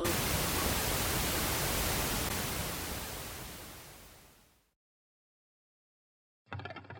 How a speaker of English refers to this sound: Then, the spirit's voice faded into the static.